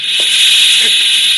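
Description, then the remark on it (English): Steam rushes steadily out through a boiler safety valve, a loud, continuous high-pitched hiss that holds unbroken for the whole moment, with a couple of faint low knocks beneath it. “As long as steam escapes through that safety valve, there's no fear of the boiler blowing up.”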